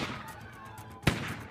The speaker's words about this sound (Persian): توی همین زمان رئیس شهربانی سرتیپ سفاری با کلت کمری خودش شروع به تیراندازی به ناصر فخرآرایی میکنه.